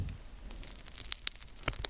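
Soft, dry crackling of the crusty Dutch Crunch topping on a baked bread roll being lightly squeezed, a scatter of small sharp crunches and snaps with no talking, growing a little louder toward the end.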